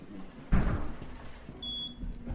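Two automatic high-security doors into a cooled polychaete specimen collection store operate: a mechanical thump and a whooshing slide, followed by a short, high electronic beep from the security system, with no one talking.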